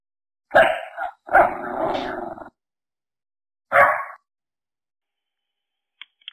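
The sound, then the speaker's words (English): A German Shepherd dog barks and growls in three loud bursts: a short bark, a longer rough growling bark, then a pause and one more bark, with no talking. “German Shepherd. I met this one.”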